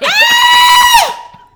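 A single loud, high-pitched excited scream from one person over Naomi Osaka, held steady for about a second before its pitch drops and trails off into quiet.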